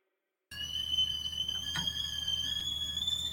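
A kettle whistles with a steady, shrill, high-pitched tone that starts abruptly after a brief silence and holds at a constant loudness, its pitch creeping slightly upward. No one speaks.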